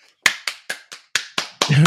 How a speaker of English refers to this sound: Applause. I'll do it too. Oh, we forgot to line up. So one, two, three, clap.